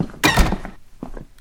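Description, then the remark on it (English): A door swings shut with one loud, solid thunk as someone walks in and shuts it, followed a moment later by a couple of softer knocks and rattles as it settles. No one speaks. “Walking in, shutting the door.”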